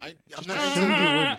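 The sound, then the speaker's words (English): A person imitates a goat with a single wavering, quavering bleat lasting about a second, fairly loud, preceded by a brief vocal catch. “That's a goat? That's a goat. I appreciate the goat noise.”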